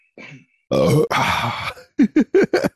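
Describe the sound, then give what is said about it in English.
A voice imitates a burp held back in the throat: a low strained gulp, then two long throaty pushes and four quick choked hiccup-like bursts, fairly loud. “You put your head down right before I got a burp stuck in my throat.”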